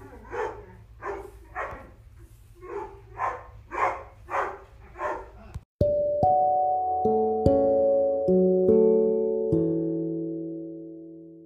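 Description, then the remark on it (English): A dog barks repeatedly in the background at home, a steady, rhythmic series of about eight loud barks, then it cuts abruptly to a short musical interlude of sustained piano-like notes. “Okay, you probably can hear dogs in the background. That's because I live with dogs and they love to bark.”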